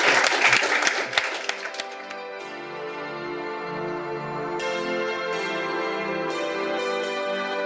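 A burst of audience applause for a panel, dense clapping for about two seconds, quickly gives way to a steady, sustained musical tone that carries on to the end.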